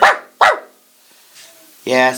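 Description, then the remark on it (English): A dog named Paris, kept as a watch dog, gives two sharp, loud barks in quick succession, followed after a brief pause by a longer, drawn-out voiced sound at the end. “My perro is a good watch dog.”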